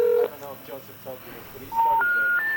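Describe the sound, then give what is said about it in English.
Telephone tones over a line while the phone lines are being tested: a short beep, then muffled speech, followed by a clear sequence of three steady electronic tones, each stepping higher in pitch. “Well, it sounds like the phones are working.”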